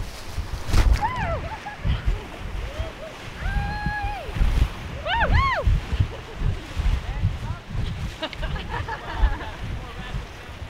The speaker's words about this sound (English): It's going to be our best rapid of the day. This is fun. Can be class 3 in higher water, probably class 2 plus right now.